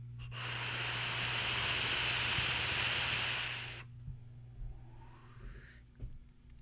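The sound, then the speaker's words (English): A steady, breathy rush of air through a vape during a long draw, lasting about three and a half seconds with a bright hiss, then it stops, leaving faint hum and a few small clicks. “See if you can hear this airflow. It feels spallow. It feels spongy, hollow, spallow to the bone.”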